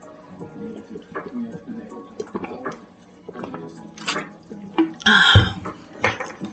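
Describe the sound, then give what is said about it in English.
Someone sips water from a glass, with soft mouth and swallowing noises followed by a brief, louder clink and slurp near the end. “So I'm gonna have a sip of water and I'm gonna go for it.”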